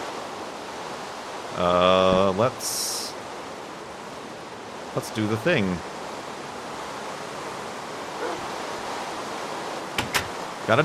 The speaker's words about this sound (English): Speaking of rain noises, wow, we're getting some weather here in Far Lands of Us lately.